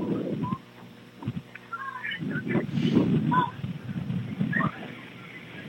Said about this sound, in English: And the wind's kicking up again. Gusting to 30. Blowing at 20. Dirt is up.